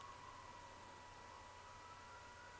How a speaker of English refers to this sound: The sirens in the background coming to get me. My knights in shining pickup truck.